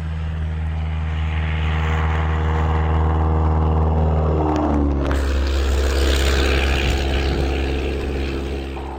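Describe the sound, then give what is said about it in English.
A yellow Piper Cub small propeller airplane drones loudly and steadily overhead, its buzzing engine tone dropping in pitch midway as it passes, then roaring on with no voices. “During the first summer of the Second World War, both Desi and Creed lusted to fly the yellow airplane. The Piper Cub was the only legacy of the failed crop dusting business that their father had operated in the town of Saco, Montana”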